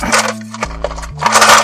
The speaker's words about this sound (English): Two dice for the reaction. An 11 is amazing.